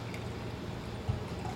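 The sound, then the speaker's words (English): A 2020 Chardonnay, a blend from Oregon vineyards, pours steadily into a glass, a soft continuous splashing trickle with no voices, plus one brief low knock partway through. “So now we're going to try the Chardonnay. So this is the 2020 Chardonnay.”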